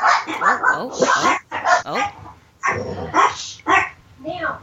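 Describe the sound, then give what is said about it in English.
Dogs bark and yip in a rapid series of loud bursts, several overlapping calls with brief pauses between them and some whiny, high-pitched yelps mixed in. “tends to bark at every little sound outside”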